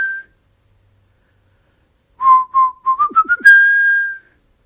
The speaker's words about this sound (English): "Quick, Lulu! See if you can put them to sleep with your magic flute." Lulu pulled out her flute and played the magic tune.